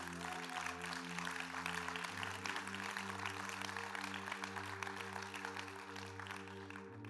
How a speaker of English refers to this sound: If you're not clapping, you should be.